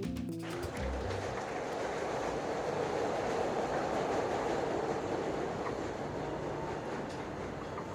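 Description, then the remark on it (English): A train rumbles steadily along the rails, a dense, continuous clatter and roar, with a brief rhythmic clanking at the very start and no voices. “The last light is fading from the sky when I board the train at Kimball.”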